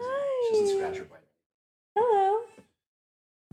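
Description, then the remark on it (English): A female cat meows twice as she is being let in, a drawn-out, wavering call followed after a short silence by a briefer second meow, both clear and fairly loud. “She just likes to cuddle, and she's very talkative.”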